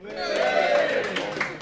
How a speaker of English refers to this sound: Cheer as we do this, please, ladies and gentlemen.